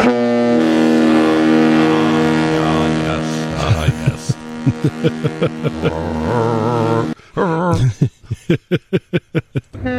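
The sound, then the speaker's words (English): A long, loud, deep horn from a boat on a lake blares, followed by shorter wavering horn tones and then a quick run of chuckling laughter near the end. “It's a magnificent sight to see those boats on the lake, but just hearing those, I can see why people love listening to our show so much.”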